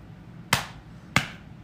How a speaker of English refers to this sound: Slapping the inner thigh.